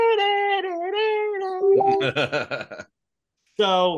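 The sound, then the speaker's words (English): A voice hums and sings an imitation of the dramatic boss music from the final fight against Wart in the video game Mario 2: a sustained wavering melody followed by a rapid pulsing run of syllables, a pause, then another loud held note. “And when we finally went toe-to-toe to Wart, they had brand new music. And it was like...”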